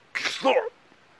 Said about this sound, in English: Troll got chilly. He sneezed loudly.